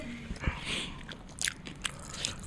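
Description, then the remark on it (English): Crisp biting and chewing on spicy fast food, with a few sharp crunches amid quieter wet mastication, fairly faint and irregular, no talking. “I've never eaten out of this place, but I'm gonna say Raising Cane's.”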